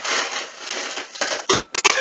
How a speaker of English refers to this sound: No, she's pouring a drink. So, what are you at, the ice machine?